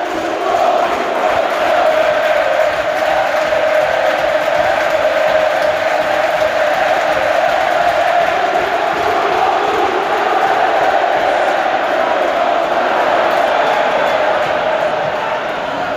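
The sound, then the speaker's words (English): A huge Benfica home stadium crowd cheers and chants after substitute Yaremchuk heads a goal, in a dense, continuous roar that stays loud and steady from start to finish, with thousands of voices blending together and no single speaker standing out. “And he's come in and headed it into the back of the net, which has sent the crowd into rapture here.”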